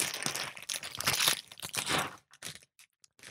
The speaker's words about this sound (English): I have to rip the bag open. Hacienda, chip and dip.